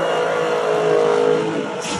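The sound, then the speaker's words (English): A powerful Dodge Challenger SRT Demon 170 muscle car engine revs loudly and steadily at a Dodge muscle car event in Las Vegas, its throaty roar holding for about two seconds before easing slightly at the end, with no one speaking. “This was actually a reveal of the Dodge Challenger SRT Demon 170.”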